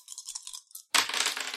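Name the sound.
three dice being rolled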